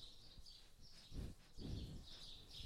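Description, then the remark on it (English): An animal called Uncle Finch sniffs right at the microphone, two or three soft, breathy puffs, while faint birds chirp steadily in the background. “Oh, he gave the microphone a rather desultory sniff and has moved on.”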